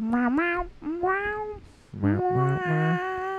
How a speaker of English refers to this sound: Wow, that cat's pretty hip. Meow. Oh, he wants to go with you now. Meow.